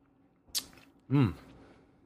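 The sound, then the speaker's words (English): A brief slurping sip of Jim Beam Devil's Cut bourbon whiskey, drunk neat, then an audible appreciative exhale with falling pitch, like an 'ahh' after swallowing; otherwise quiet. “So let's take a sip”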